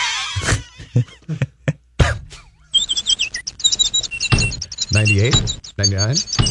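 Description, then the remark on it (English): Several sharp thuds of birds flying into the glass of U.S. Bank Stadium land early, then a busy run of high, bright bird chirps and tweets fills the rest, with a few lower squawky calls mixed in, all fairly loud. “Tells you how many birds die every day flying into U.S. Bank Stadium.”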